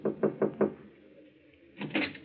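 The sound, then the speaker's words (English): Four firm, evenly spaced knocks on a wooden office door marked manager at the Tripoli Cafe, followed by a brief pause and a softer muffled rustle or shuffle. “toward a door marked manager. He hesitates a moment, glances at the two men beside him, and knocks.”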